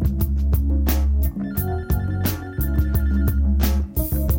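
A phone rings with a loud, melodic ringtone, a bright tune with steady percussive beats repeating continuously, with no voices.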